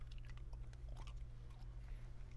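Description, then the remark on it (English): Crunching and chewing of a hard mint in the mouth, with irregular crisp crackles over a steady low hum, no talking. “I had a mint in my mouth. It was screwing me up.”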